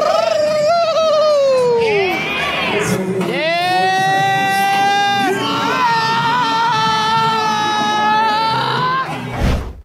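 A group of people scream in alarm, loud high-pitched shrieks overlapping and rising and falling in long sustained cries for nearly ten seconds, ending in a short sharp burst.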